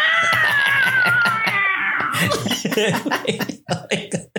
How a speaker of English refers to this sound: Yeah, just have like... have a cat. Like a dying cat.